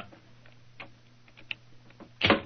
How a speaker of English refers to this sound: Is the door locked? Yes, but I think the skeleton key will do the trick.